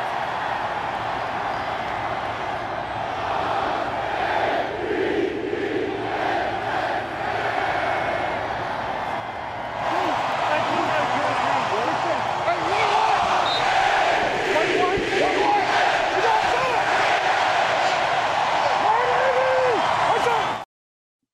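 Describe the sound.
A large stadium crowd at a Baltimore Ravens game roars and chants together, the chant starting as a fan takes off his shirt in the upper deck, in a loud, steady wall of voices, swelling slightly louder about halfway through and holding until an abrupt cutoff.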